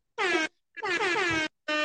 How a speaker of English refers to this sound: I'm giving out air horns to everybody here. Everybody.